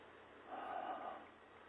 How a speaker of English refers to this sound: Now he's just breathing into the microphone. I don't know if you guys could make that out.